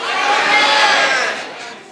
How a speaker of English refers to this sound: On the count of three, I want you to scream it out loud, and we're going to hear all kinds of different flavors. But on the count of three, I want you to scream and tell me your favorite ice cream. One, two, three.